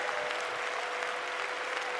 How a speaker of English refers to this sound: Oh, let's clap our hands and praise him.